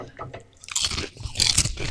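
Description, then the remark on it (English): Crisp crunching of a hard candy snack being bitten and chewed, with two bursts of bright, crackly bites, the second louder, and low chewing sounds between them. “You guys, I might finish this little candy thing, but I ain't eating that.”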